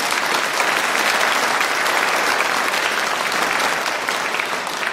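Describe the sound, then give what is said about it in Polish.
A sustained burst of audience applause at the 42nd Orthodox Christmas Carol Evenings concert, for a fourth-grade primary school pupil, many hands clapping densely and evenly at a steady loud level for several seconds with no voices standing out. “Wielkie brawa dla niej.”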